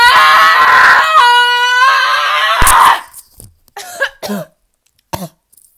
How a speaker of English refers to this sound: Can I just scream? Can I start this one with a scream?